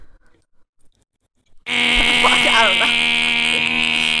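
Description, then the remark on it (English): After a quiet stretch with faint low murmurs, a loud, harsh electronic buzzer kicks in abruptly and drones steadily at a high, buzzing pitch until the end, with brief wavering sounds underneath. “And as this buzzer continues, dip.”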